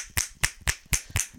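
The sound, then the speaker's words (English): Six sharp finger clicks in a steady rhythm, each a bright, close, punchy snap with a quick decay, recorded right up against the microphone with no talking. “You click your fingers into the mic.”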